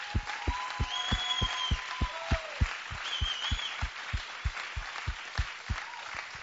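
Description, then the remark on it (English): Applause at Hill Country Church, with a crowd clapping in a steady, even rhythm, roughly three sharp claps per second, while a few high, drawn-out whistle-like cries ring above the beat. “I mean, you guys, another round of applause.”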